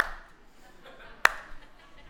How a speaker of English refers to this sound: And then I wrote in my notes, "Initiate slow clap."